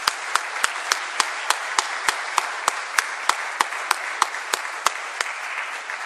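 An audience applauds steadily to welcome a speaker, a dense wash of clapping with sharp, evenly spaced claps popping out in a regular rhythm, as if some people clap in time. No one speaks.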